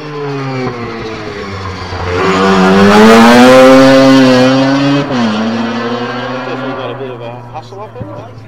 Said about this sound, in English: This is the RX4 coupe. Very quick little car, this. RX4. Close gears.